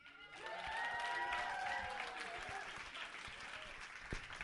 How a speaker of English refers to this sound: I want to give you a big round of applause for my friend Marcus Coleman.